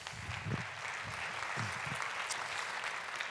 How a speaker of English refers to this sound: Great learnings. Great. Yeah, you can applaud those.